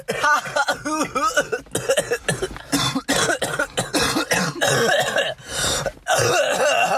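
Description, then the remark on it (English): Two people give several loud coughs, some deliberately imitated, in uneven bursts between voiced, laugh-like sounds, with a few harsher real coughs toward the end. “There are imitations of our coughs turn into coughs. Real coughs.”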